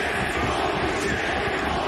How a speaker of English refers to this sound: Now the crowd are going nuts. They see, they're shocked. Wow, this has come completely off the rails.